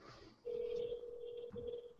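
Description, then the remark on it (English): A steady electronic telephone tone rings out over a phone line, holding for over a second with a brief dip before continuing, like a call ringing through after dialing. “Oh, no, she's not answering.”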